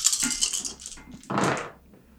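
A handful of dice from a big dice pool clatters and rattles across a hard surface, a scattered tumbling run followed by a second, louder burst of clicking before it settles, with no talking.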